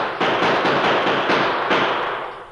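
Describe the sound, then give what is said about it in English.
A volley of gunshots fired at the Lone Ranger, Rick and Tonto as they race away from a railway siding crackles in quick succession, several sharp reports blurring into a loud, continuous roar of noise that fades slightly at the end. No one speaks. “There he goes. Let him have it.”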